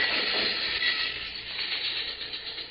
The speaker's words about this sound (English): I'll lie low till the train goes past.